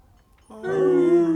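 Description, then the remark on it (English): Human voices imitate a wolf howl, a single sustained wavering note that swells in after a short quiet moment and holds steady and fairly loud until the end. “Now, let's have a good howl to get ourselves in the mood.”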